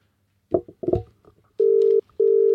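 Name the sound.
phone call ringing tone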